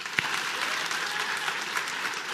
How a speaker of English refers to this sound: What I'd like for y'all to do is give them a round of applause. Let them know how much you appreciate them. I want them to hear it.